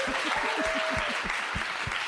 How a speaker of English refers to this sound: Big round of applause for Arthur Matthews.